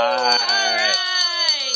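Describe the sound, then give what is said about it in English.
A bright, ringing handbell is shaken rapidly to celebrate a donation update during a fundraising drive, its clapper striking repeatedly so the metallic tones shimmer and overlap, fairly loud, then the ringing settles into a sustained tone. “And we do have an update, and woohoo, we get to ring the bell again.”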